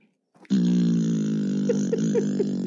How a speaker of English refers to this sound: Alexa, fart. That was a muffled one. Would you like to hear another fart? Yes.